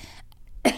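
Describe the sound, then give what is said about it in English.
A short cough bursts out after a brief hush, a single harsh throaty hack with a second smaller push at the end. “No, I'm coughing.”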